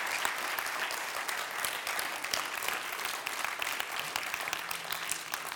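A church audience claps steadily and densely for several seconds, a continuous crackle of many hands at an even loudness with no voices rising over it.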